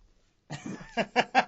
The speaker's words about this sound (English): Did you just blow your nose then? Slightly. You made a comedy honk. I put the phone as far away as I possibly could from my sitting position. It was like Untitled Goose Game. It was delightful.